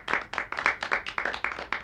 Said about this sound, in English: Golf clap, Amanda. Golf clap.